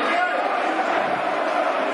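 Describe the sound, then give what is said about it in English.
A large stadium crowd roars and applauds at the final whistle of a 0-0 football match between Bournemouth and Millwall, as Sid Nelson leaves the pitch. A steady, dense wash of noise holds at the same loudness from start to finish, with no single voice standing out. “Sid Nelson getting a good round of applause as he leaves the pitch.”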